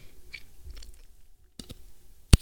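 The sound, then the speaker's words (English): Soft, wet chewing and mouth sounds, a few quiet smacks, then a single sharp pop near the end as a gum bubble bursts. No one speaks. “Okay, but I am, just for shits and gigs, gonna take a picture of the bubble I can actually accomplish.”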